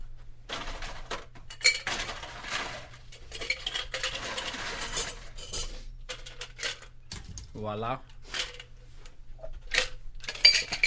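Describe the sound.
Ice, including a giant chunk from the fridge, clinks and rattles against a drink glass in a string of sharp, bright taps, with a brief spoken word and a short voiced sound partway through.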